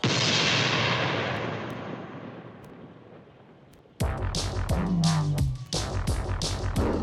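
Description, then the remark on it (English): A loud gunshot blast, fired at a lion in a jungle, whose rumbling noise slowly fades over several seconds, followed by an abrupt burst of sharp cracks and clatter with a low sliding groan underneath. No one speaks. “I will shoot the lion now.”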